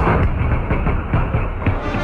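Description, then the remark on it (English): A lightning strike hitting a truck, slowed down: a deep, steady rumbling roar broken by a rhythmic series of dull pops, with no voices. “Well, and to listen to it slowing down, it's like pop, pop, pop, pop, pop.”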